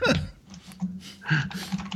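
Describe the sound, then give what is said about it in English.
Clattering bursts of computer keyboard typing, irregular and fairly loud, picked up by a microphone placed behind the keyboard, with a low steady hum underneath throughout. “this idea of you putting the mic behind the keyboard was a bad call. I'm going to tell you right now. All I'm hearing is keyboard.”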